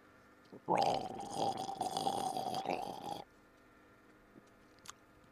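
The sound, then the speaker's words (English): A voice imitates the gurgling of roof water coming out of a gargoyle's mouth: a loud, throaty, bubbling gargle held for about two and a half seconds, then it stops abruptly into near silence. “The water comes off the roof, goes down a thing, and comes out the mouth of the gargoyle, and they make this gurgling sound.”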